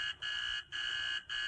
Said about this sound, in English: This is it, baby. A rooming house. Now, if the landlady's only home... Ring the bell,